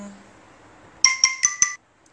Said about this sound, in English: That's an alarm, sorry about that.